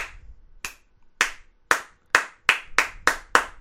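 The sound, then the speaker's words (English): A lone slow clap: sharp, crisp hand claps start widely spaced and gradually speed up, about nine in all, growing steadily quicker with no voices. “Well, on that slow clap note, I just want to say thank you”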